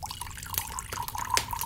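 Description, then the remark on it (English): Red wine pours into a glass, a steady trickling gurgle lasting a couple of seconds with a faint rising ring as the glass fills. Nobody speaks. “Let's sit in front of the fire and warm ourselves with a glass of red wine.”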